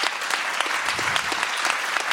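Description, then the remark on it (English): An audience claps steadily, a dense, crackling wash of many hands at moderate loudness with no voices rising above it. “I would like to turn those claps into cash.”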